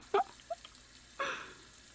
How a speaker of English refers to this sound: did you leave the water running somewhere? I don't hear anything. It sounds like it's coming from the bathroom.